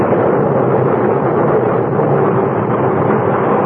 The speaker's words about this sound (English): We could still see the faint outlines of the ship when suddenly, without warning, a cloud of black smoke shot up from her bow. And within moments, a great explosion blew her apart from stem to stern.